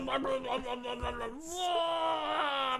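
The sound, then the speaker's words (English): A person vomiting in a video being played, with a long, strained, groaning retch, one continuous voiced heave that holds a steady pitch, then lurches upward and carries on loudly to the end. “Started vomiting and I paused it”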